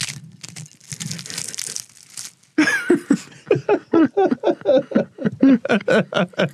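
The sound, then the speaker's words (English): Crackly crunching of a crusty baguette for a couple of seconds, dry brittle bites and crinkles, followed by someone laughing in rhythmic bursts. “If someone were to squeeze you, you would need it to sound that very specific baguette crunching sound.”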